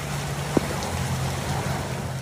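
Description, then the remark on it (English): Someone walks home through knee-deep floodwater covering the streets, with a steady wash of moving water, a low engine-like hum underneath, and one brief knock partway through. “It was coming up to my knees, but it smelled like the Pacific. Like, I was literally walking in the ocean”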